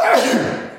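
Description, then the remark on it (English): A single loud sneeze, a sharp, breathy burst that fades quickly over under a second, with no talking. “We'll have to edit out that sneeze.”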